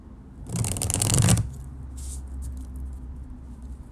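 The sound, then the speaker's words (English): A quick burst of tarot cards being shuffled one last time before a reading, a dense papery riffle lasting about a second, followed by a few faint soft taps and rustles. “Let me get one good last shuffle in there.”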